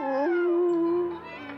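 A single long wolf howl, loud, starts with a brief upward wail, then holds a steady mournful tone before fading slightly at the end.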